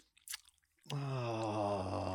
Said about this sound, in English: I'm sorry for the chewing.